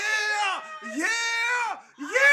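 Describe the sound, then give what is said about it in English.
A voice imitates a woman yelling: three loud, drawn-out, high-pitched wails in quick succession, strained, with brief breaks between them and no other sounds. “When she started yelling”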